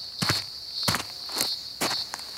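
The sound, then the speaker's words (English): Cicadas in a bush call with a steady, high-pitched continuous whine, while about four crunching footsteps fall at an even pace over it. No one speaks. “I think it's a type of insect, but I'm not sure which insect yet.”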